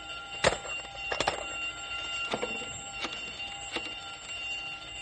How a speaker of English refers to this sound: The alarm means that whatever's escaped is now out of the building and onto the grounds.